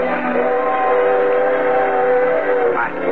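A train sounds loud, a steady rumbling roar with a sustained, whistle-like tone running through it for about three seconds, with no voices.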